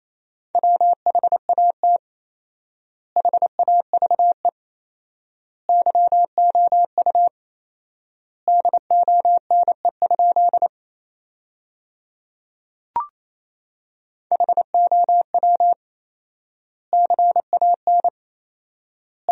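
Fast Morse code at 28 words per minute with fourfold word spacing, sending sentences built from the 500 most common words, as a steady mid-pitched tone, rapid dots and dashes clustered into words separated by long silent gaps, with one sharp click partway through. No voices.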